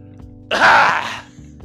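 A single cough, meant to be the smallest cough possible, a short breathy burst of under a second that comes out fairly loud and harsh, with only a faint low hum around it and no talking.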